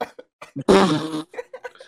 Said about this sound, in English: That was an epic burp. Yeah, that wasn't even a burp. I choked up on something, like a little baby.